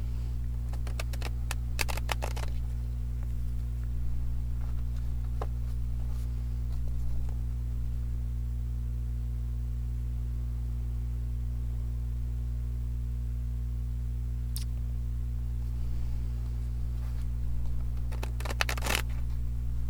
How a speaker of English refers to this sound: This will be the official start of the cards. I'm going to do like conscious breathing as I shuffle the cards.